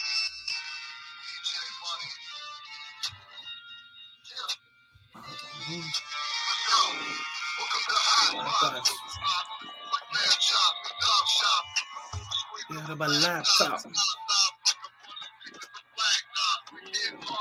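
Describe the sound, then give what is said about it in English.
A song plays back quietly, thin and tinny, as if from a small phone speaker with almost no bass, running continuously throughout. “That's really low, too. Sounds like it's like coming off your phone or something.”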